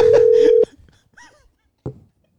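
signal or alarm, outgoing phone call ringing

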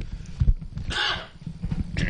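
human body sound, cough

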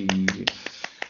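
crowd, applause

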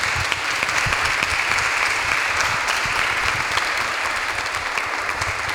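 crowd, audience applause

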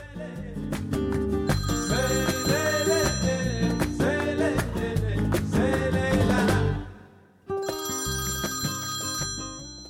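signal or alarm, telephone ringing

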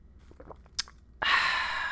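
food or drink, sipping a drink

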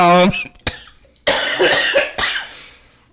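human body sound, repeated coughing

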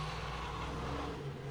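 vehicle, truck engine revving outside

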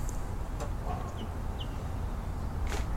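bird, mallard duck call

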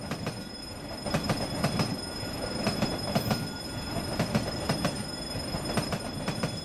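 vehicle, moving train on rails

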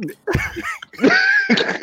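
human body sound, cough

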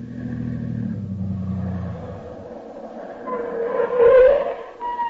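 vehicle, car driving up

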